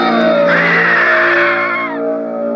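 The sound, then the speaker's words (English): A person lets out a loud, sustained scream, a strained continuous cry that wavers in pitch for about two seconds before easing slightly at the end. “When you stop screaming, you'll start talking about it.”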